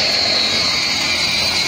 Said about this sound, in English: A drone flies into the air. It can reach a rooftop easily and help locate pools of water and to apply chemicals, reducing labor requirements and monitoring mosquito-related data.